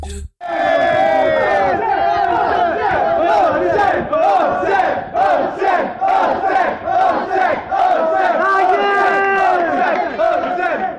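A large crowd chants the name "Olsen" together in a loud, steady rhythm, many voices rising and falling on the repeated short phrase without pause.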